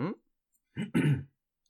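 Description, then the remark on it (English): A person clears their throat in two rough, raspy bursts, the second longer and louder, right after a brief trailing bit of voice, then quiet. “I have to clear my throat.”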